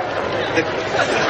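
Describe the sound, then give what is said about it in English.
A crowd of hundreds of people gathered outdoors for a Thanksgiving Day turkey event chatters steadily, a dense, unbroken wash of overlapping voices with no single speaker standing out, holding an even loudness throughout. “I'm here with hundreds of people who have gathered to witness what has been described as perhaps the greatest turkey event”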